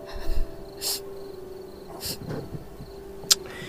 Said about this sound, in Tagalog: Paano ko makakatulog yan? Singhot ka ng singhot. Hikbi ka ng hikbi.